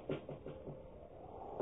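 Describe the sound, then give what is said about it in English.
Faint knocking on a door: four soft, quick taps in a steady rhythm, a pause, then one more tap. The sound is low and muffled, with no voices. “A knocking. Tapping.”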